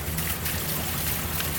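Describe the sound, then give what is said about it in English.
A steady stream of liquid trickles and splashes continuously, fairly loud, with a broad hissing wash and no voices; the liquid is poured to imitate the sound of a person peeing a lot. “But I didn't pee that much, so do you mind if I get some of this so it sounds like I peed a lot?”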